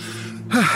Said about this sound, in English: My husband appears behind us, panting.